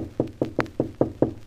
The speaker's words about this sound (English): Knock gently, my dear.